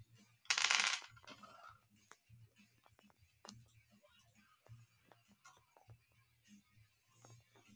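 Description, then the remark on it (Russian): A short rattling burst, then dice clatter and tap on a hard table in scattered light clicks, with people talking quietly underneath. “Тебе один кубик, мне один кубик.”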